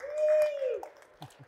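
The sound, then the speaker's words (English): An audience applauds the past, current and incoming presidents of the NPC, responding with a long, falling whoop or whistle followed by a few sparse, scattered claps. The burst is brief and moderately loud. “For everyone in the audience, let's give these three a round of applause for joining us here today.”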